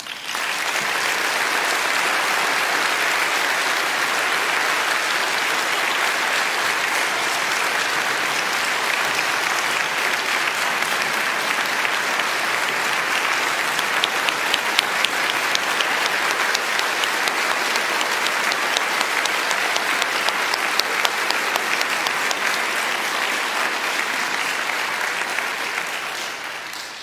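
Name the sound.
audience applauding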